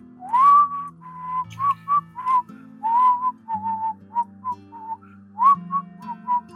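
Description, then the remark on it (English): A person whistles a casual, wandering tune of short bright notes and a few sliding phrases, fairly loud, over a soft low musical background with no talking. “… is just whistling.”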